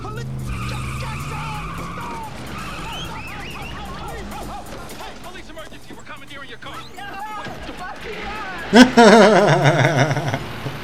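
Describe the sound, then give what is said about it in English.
A police car skids with shrill, wavering tire squeals, building to a loud screech near the end as it halts, while voices talk over the engine noise. “Still in Biff's police car. I can recommend a good bathhouse if you like. Stop the car!”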